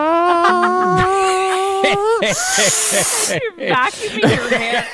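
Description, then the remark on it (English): A voice imitates a vacuum cleaner being used on hair: a steady, slowly rising droning hum, then a loud breathy whoosh of hiss, trailing into choppy voiced sputters. “You're vacuuming your hair.”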